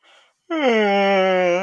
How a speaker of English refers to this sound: It was supposed to be a yawn.